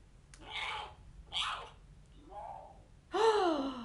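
A male lion cub roars as its fur is rubbed, in a few short, breathy growls, then lets out a louder, drawn-out yowl at the end, with nothing else around it.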